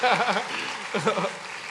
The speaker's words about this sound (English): Okay, so let's clap for all these people. God bless you, you will be seated.